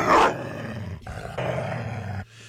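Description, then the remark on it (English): A German Shepherd, First Dog Commander of the White House, lets out a sharp, loud bark, then growls steadily in a low, rumbling tone for about two seconds before it trails off, with no talking. “Well, sad news, as First Dog Commander has been given to relatives.”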